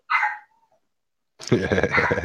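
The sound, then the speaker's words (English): A dog lets out one short, high-pitched whine that trails off, followed by a pause and then a person talking. “I can tell the difference in the barking. That's my wife. Oh boy. Yeah, because it's not barking, it's whining now.”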